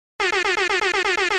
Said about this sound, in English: Hit me with some more air horns.